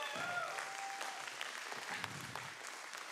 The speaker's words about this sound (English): Y'all give her a great big round of applause.